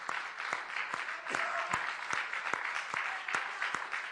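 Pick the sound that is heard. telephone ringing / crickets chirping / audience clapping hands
audience clapping hands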